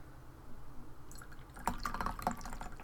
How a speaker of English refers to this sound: I'm going to pour a little tea right now.